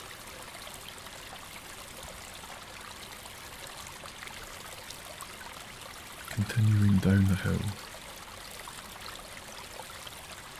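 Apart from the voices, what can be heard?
rushing stream water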